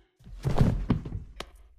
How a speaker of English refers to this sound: You just knocked out Sandra's ghost? Nice punch, sis.